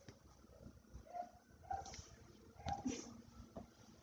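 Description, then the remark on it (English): A dog being walked by its owner barks outside, several short, faint yelps spaced irregularly over a quiet background, heard through an open window. “And now there's a dog outside barking.”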